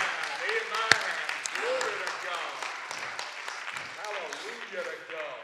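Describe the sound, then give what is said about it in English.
A church audience claps their hands during a morning sermon in a dense, steady burst of applause that lasts several seconds, with voices calling out and cheering over the clapping. “Somebody clap your hands this morning.”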